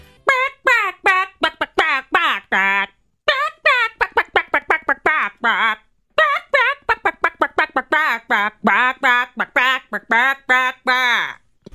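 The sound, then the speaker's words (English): A person clucks out a song like a chicken for a name-that-song game, a steady run of quick, pitched squawks and bawks rising and falling in melody, slightly pitchy as the performer is losing their voice, fairly loud with only brief pauses. “I'd never stoop to the level of pretending to be a chicken”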